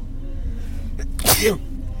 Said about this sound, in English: Want me to get something for your sneezing? No! Are you allergic to something?